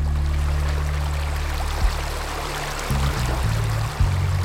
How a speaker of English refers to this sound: When it rains, the trash is swept up in a swelling stream that runs right through the middle of Los Laureles Canyon.